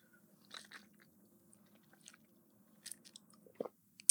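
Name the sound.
drinking water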